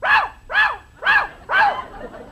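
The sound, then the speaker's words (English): A parrot named Polly imitates a dog's bark: four sharp, evenly spaced woofs about half a second apart, loud and fairly high-pitched, with nothing else but a faint hiss between them. “Jack, what have you been feeding this bird?”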